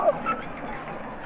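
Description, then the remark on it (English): A dense underwater chorus of harp seal calls, chirps and squeaky chatter overlapping continuously at moderate volume, with no clear pauses, recorded through a hydrophone lowered a few feet below the ice. “Those are all harp seals.”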